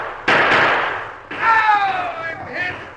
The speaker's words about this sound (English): as I started to reach under the seat for the strong box, I heard shooting. And I saw a couple of hombres coming lickety-split across the plains with their guns blazing.